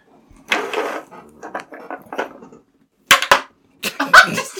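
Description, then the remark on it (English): Dice clatter and tumble across a hard tabletop during a Dungeons & Dragons 5th edition game, a run of rattling followed by several sharp clicks and knocks as they bounce and settle. “Let's roll initiative on this”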